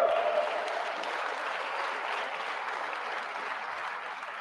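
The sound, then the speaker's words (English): A crowd at a speech in Colorado applauds steadily for a few seconds, a dense, even clatter of many hands clapping at once with no voices rising above it, easing off only slightly toward the end. “You can clap for that, man.”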